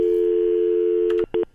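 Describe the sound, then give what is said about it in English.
A steady, unbroken telephone dial tone hums loudly for about a second on a phone line on the Scott Thompson Show on AM 900 CHML, then cuts out and is followed by two quick electronic beeps like keys being pressed to dial the Canada Revenue Agency. No one speaks. “Hey, can you give me a phone line?”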